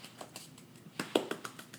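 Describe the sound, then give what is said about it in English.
A quiet golf clap: about ten soft, light claps in a quick, slightly uneven patter, each a brief dry tap with no voices. “Like a golf clap, and it's just...”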